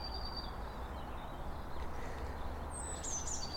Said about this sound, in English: And this is a blue tit just singing here.